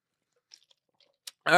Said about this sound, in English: Now, I'm going to take a gulp of water before I get into this